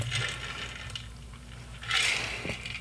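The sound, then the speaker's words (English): Quiet sips of water, with two brief slurping bursts near the start and end and a faint swallow between them. No one speaks. “I need a sip of water.”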